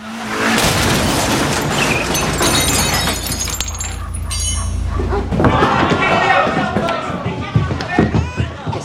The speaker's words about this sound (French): Il a défoncé la porte avec sa voiture.